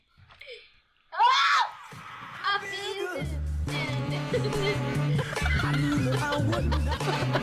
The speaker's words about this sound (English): So that wasn't planned. That scream was legit